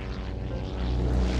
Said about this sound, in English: The silver plane gleams in the sunlight as it leaves the grand hotels of Miami Beach behind, its twin propeller engines throbbing monotonously.